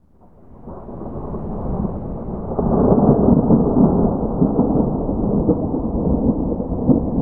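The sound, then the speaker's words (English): Deep, rolling thunder swells up from quiet into a heavy, sustained rumble, growing louder partway through and continuing to growl steadily with no voices present. “Even though the rains were months away, dark blue clouds grew to the south. Furious lightning strikes flashed blinding white.”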